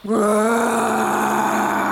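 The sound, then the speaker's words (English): A person lets out a loud, sustained imitation of a roar, a single voiced bellow that holds a steady, fairly low pitch for about two seconds with no other talking. “I am woman. Hear me roar.”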